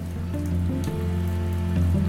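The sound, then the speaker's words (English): Steady rain hisses and patters on a rainy Monday in January over a low, humming engine-like drone, a continuous wash of sound at moderate volume with no voices. “It's a rainy Monday in January,”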